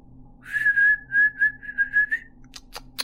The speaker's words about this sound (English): He called the dog's names and whistled out.